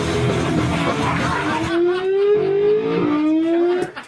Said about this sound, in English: It totally sounds like a car speeding off the bridge. And Kirk's a little bemused. Kirk isn't that bothered. Kirk says it sounds like a car going off a bridge or something like that.